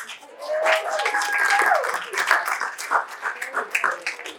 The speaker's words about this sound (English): See, you do get a clap.